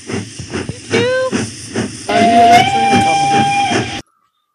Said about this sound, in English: Here's the train.